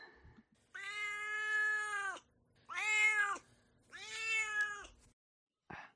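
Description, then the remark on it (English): A cat named Duarte meows three times in a row, long drawn-out calls with short pauses between, loud, with no talking over them. “All right, well, now it's time for Duarte's Corner, where my cat Duarte shares his opinions on the book.”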